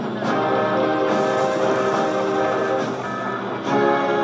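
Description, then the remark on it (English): A loud, steady mechanical drone with a dense tonal hum rolls on for several seconds, with faint clanks and a brief dip near the end, as hangar doors at the North Pole grind open. “Open hangar doors.”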